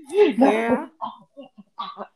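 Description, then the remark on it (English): A person sputters and coughs after drinking water too fast: a strained, wavering vocal sound followed by several short coughs spaced out over a couple of seconds. “I drank water too fast. I'm sorry,”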